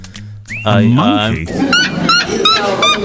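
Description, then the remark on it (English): A red-legged bird gives a loud, harsh, wavering call, then a quick run of sharp, repeated squawking notes, clear over a faint background hum. “It's a red-legged something or other.”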